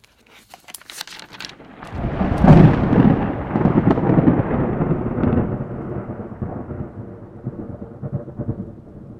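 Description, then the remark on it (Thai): Thunder before a storm, as the sky darkens ahead of heavy rain, builds from crackling onset into a long, loud low rumble that rolls on for several seconds before slowly fading, with a faint rain-like hiss beneath and no voices. “เสียงคำรามของท้องฟ้าดังขึ้นมาทำให้เต้ที่กำลังนั่งทำงานอยู่หยุดชะงัก”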